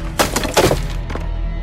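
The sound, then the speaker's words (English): A thrown tomahawk with a rope attached strikes wooden branches with a few sharp, woody cracks and thunks in an irregular burst, followed by a softer clatter as it topples backwards, over a steady low rumble. “It hits the branches and topples backwards.”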